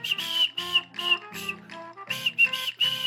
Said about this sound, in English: And probably one of the greatest whistles of all time. My whistle's not too great, but...